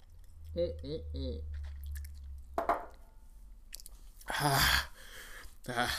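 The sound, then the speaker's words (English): Close-up sipping of whiskey with soft wet mouth sounds, followed by a loud, breathy exhale and a few short voiced grunts, no words spoken. “Need to take a second sip.”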